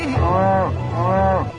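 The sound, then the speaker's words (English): Two loud cattle moos in quick succession in a news report clip, each a drawn-out, slightly rising and falling low, with a brief gap between them and a steady background hum underneath. “Could these cattle be a target for terrorists?”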